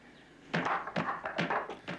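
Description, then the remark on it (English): Quick hard knocks on a wooden martial arts dummy, a wooden man used for blocking and punching techniques: after a near-silent half second, six or seven sharp, clacking thuds land in rapid pairs and bursts, fairly loud, with no talking. “It's a wooden man, and it's used for, like, blocking and punching techniques. Watch.”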